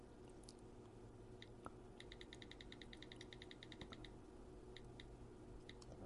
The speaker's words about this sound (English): This is the most unprofessional thing I can do. I'm going through notes right now, you'll just hear clicking as I delete stuff, and hey, I talked about this.